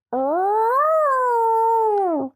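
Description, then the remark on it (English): A person imitates a dog's gurgling howl with one sustained, loud vocal note lasting about two seconds. It rises in pitch, holds, then sinks away, with no other talking around it. “And the dogs. Saber. Oh, literally. Do your best Saber impersonation real quick.”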